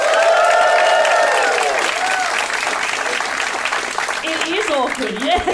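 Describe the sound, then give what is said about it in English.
A live audience breaks into sustained applause, a dense wash of many hands clapping with some cheering, while voices call out and talk over it toward the end. “give me a round of applause, ladies and gentlemen, if you've ever heard the Do Go On podcast before”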